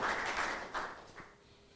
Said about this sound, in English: Give him a round of applause for that.